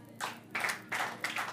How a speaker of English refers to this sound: You go to a place to believe, clapping to pray.